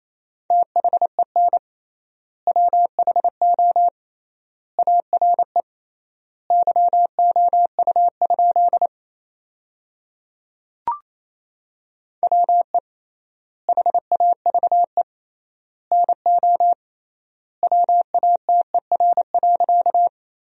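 Rapid Morse code beeps at 28 words per minute, sending sentences made from the top 100 words with triple word spacing, on a single steady mid-pitched tone, keyed in quick bursts separated by short gaps, with a longer pause and one sharp click midway. No voices.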